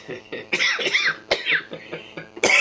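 A person coughs several times in quick succession, loud, each harsh burst followed by a raspy, throaty tail, with one last forceful cough at the end.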